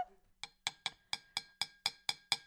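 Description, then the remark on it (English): Two drinking glasses clink together about nine times in a quick, steady rhythm, each tap a bright, ringing chime with a short decay, fairly loud with no talking. “And I'm gonna get it to kiss my other glass just so we get some noise.”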